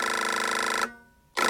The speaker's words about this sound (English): Pooley in his office is most likely about to receive a phone call, or so the script says.